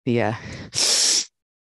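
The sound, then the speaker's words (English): A voice imitates a sharp, forceful snorting inhale through the nose, as an example of breathing to avoid in yoga: a brief voiced grunt, then one loud, hissy half-second sniff, with no other sounds. “So ujjayi, or even not ujjayi, we want to get away from I'm going to say that my mom's here, and sorry, mom, we want to get away from the cocaine breathing.”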